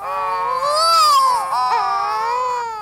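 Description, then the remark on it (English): Courting pairs of wedge-tailed shearwaters, dark gull-sized seabirds, give a loud, continuous wailing call, a drawn-out moaning cry that rises and falls in pitch much like a crying infant, with no one talking. “Some early sailors feared this ungodly wailing meant they had been tricked ashore at the gates of hell itself, when in truth, they stood shuddering among courting pairs of seabirds called wedge-tailed shearwaters.”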